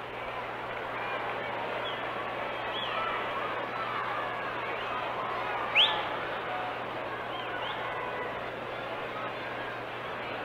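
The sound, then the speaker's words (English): A steady, soft murmur of a bubbly ballpark crowd at a 1964 Yankees game, as Lee Stang pitches to Roger Maris, fills the whole stretch, an indistinct wash of many voices, dotted with a few faint high chirps and one brief sharp whistle-like note midway. “Got kind of a bubbly crowd out here today, sort of a soft murmur.”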